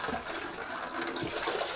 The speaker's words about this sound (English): Winds that sent trees onto roofs and roofs to the ground. Before we knew it, there was water just pouring inside.